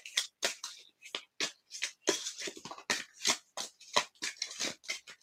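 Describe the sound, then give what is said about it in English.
A deck of cards being shuffled, with a rapid series of crisp papery riffles and slaps repeating unevenly for several seconds, with no talking. “Wish I could shuffle cards like it.”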